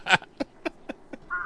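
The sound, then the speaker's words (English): Crows fighting: a loud raspy caw followed by a quick run of four shorter harsh calls at a steady clip, then a brief nasal squawk, with no talking. “Oh, no, the crows are fighting.”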